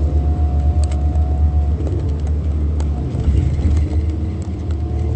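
Steady low engine rumble of a bus heard from inside while moving, a continuous loud drone with faint rattles and clicks scattered over it, no voices.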